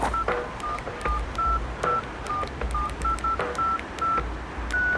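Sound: phone number being dialed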